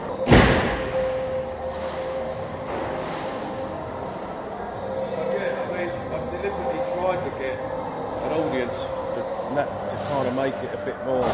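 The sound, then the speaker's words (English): A door slams shut with a sharp, loud thud near the start, followed by a muffled, rumbling room with faint background voices and clatter. “Let me shut that door.”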